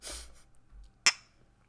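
Shot glasses of tequila clink together once, a sharp, bright tap with a short ringing tail, preceded by soft breathy rustling and followed by quiet.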